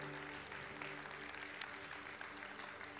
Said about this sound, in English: Ladies and gentlemen, come on, big round of applause as we finish for Dr. Krish Kandiah.